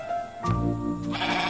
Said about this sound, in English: I tell you, I'm having some language difficulties with these billy goats, you know. They might need an audition, I think.